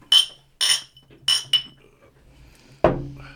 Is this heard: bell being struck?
no